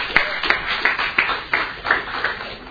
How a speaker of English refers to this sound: So if you would, give her a round of applause.